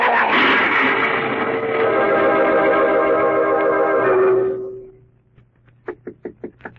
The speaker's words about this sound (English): Who's there? Who's knocking?